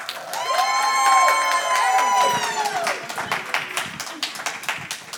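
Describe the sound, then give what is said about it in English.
A church audience whoops and cheers loudly with rising, wavering voices while steady applause crackles underneath as a woman walks up to the stage; the cheering fades after a few seconds, leaving a dense patter of many hands clapping. “Yeah, just keep clapping till she gets to the stage. There we go. A little bit more cheer.”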